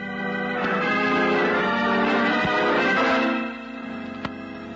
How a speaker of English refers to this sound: The bell.